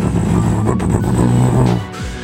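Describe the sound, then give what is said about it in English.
A motorcycle engine approaching from the west roars loudly, holding a steady, rumbling drone before its pitch drops away sharply at the end. No voices are heard. “So, yeah, both of you hear the sound of a motorcycle from the west.”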